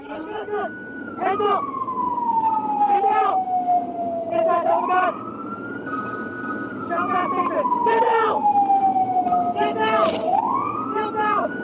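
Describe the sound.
A police constable's car siren wails in a slow, sweeping rise and fall, cycling about twice, loud and steady, while indistinct voices break in over it in short bursts.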